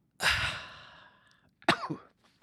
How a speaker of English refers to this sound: Oh, it shouldn't be you coughing.